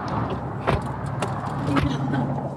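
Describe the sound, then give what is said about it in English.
People getting into a car: three sharp clunks and rattles, like doors and seat mechanisms, spaced about half a second apart over a steady low rumble, with faint muffled voices in the background. “Should we just hop in my car?”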